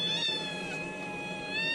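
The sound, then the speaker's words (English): Several kittens meow loudly and continuously at feeding time, their high, thin cries overlapping into a steady chorus with no talking. “Now, it's a little loud, but this is feeding time. This is cat baby feeding time.”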